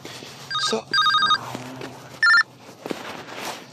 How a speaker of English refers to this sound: So as I wrap things up, turning down a phone call so I can focus on the segment